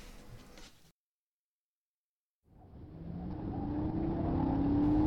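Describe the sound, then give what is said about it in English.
A brief burst of noise, then a pause, before a car engine rumbles in loud, its droning pitch climbing steadily as the car drives and accelerates with a passenger shut in the boot. “I wish we could have taken the truck and not had to shut Charlie in the boot like that.”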